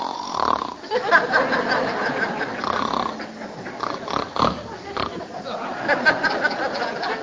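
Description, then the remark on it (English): A man's voice imitates a husband snoring loudly, with a run of rough, rattling, snorting breaths repeating for several seconds and no words spoken. “The melodious, mellifluous jargon of your husband snoring, okay?”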